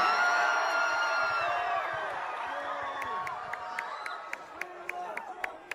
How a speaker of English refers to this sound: That sounds like a big crowd of beautiful people.